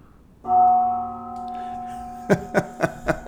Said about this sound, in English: Our new little touch. You pull a gong out of your pocket, did you? Okay. Hey, you never know when you need a gong. Comes reaches over and just hits the gong out of it.